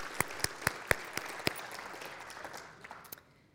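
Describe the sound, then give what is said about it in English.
An audience gives the Lord a hand clap of praise: a wash of steady clapping punctuated by several sharp, evenly spaced louder claps at first, then tapering off and fading out after about three seconds. “I think that we should give the Lord a hand clap of praise.”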